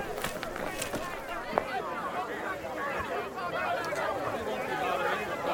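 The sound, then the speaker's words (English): A mixed crowd at a gathering murmurs together in a steady, indistinct babble, with many voices overlapping at moderate volume and no single speaker standing out, and a few brief clicks scattered through. “Sounds like a mixed crowd to me.”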